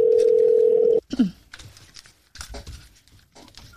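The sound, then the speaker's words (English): A loud, steady outgoing-call ringing tone hums for about a second and then cuts off abruptly, followed by faint clicks, shuffling and low background noise. “All right, it's ringing now.”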